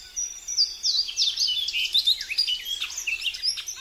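A bunting sings from an elevated perch at the forest edge, a rapid, bright warbling song of high, sweet notes and quick slurred phrases, running continuously for a few seconds with no voices.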